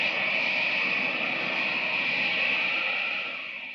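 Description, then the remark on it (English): A loud, steady whooshing rush of air as Superman leaps into the air in the moonlight, hovers a moment and takes off in widening circles, holding strong for a few seconds before beginning to fade away at the end. No voices. “Red cape streaming in the wind, blue costume flashing in the moonlight, Superman leaps into the air, hovers a moment, and takes off in a series of widening circles to find the autogyro”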